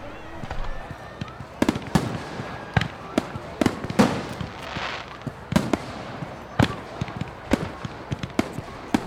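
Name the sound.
fireworks exploding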